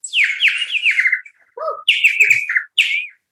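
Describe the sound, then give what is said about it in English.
A water-filled plastic bird-shaped warbler whistle, used as a sound-effect prop, warbles in bright, bubbling trills, three loud bursts separated by short pauses, with a brief lower gurgle between them. “This is a plastic bird-shaped object that is filled with water.”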